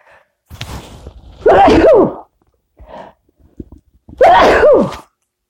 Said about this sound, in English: Thank you. I can hear you all saying bless you or Gesundheit.